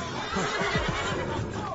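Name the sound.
horses neighing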